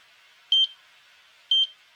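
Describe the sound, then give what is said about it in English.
Medical monitor beeps that quicken: two short, high electronic double-chirps about a second apart, clear, over a faint steady hiss with no voices. “The monitors show even more activity and the beeps quicken.”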